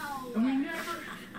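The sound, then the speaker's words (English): A person voices a short, whistly bird-call imitation, a single rising tonal note lasting under half a second, fairly clear, with no other talking around it. “I gave you my bird noise.”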